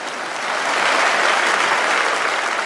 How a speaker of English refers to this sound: That wasn't even a smattering of applause. That was almost like mocking applause, right?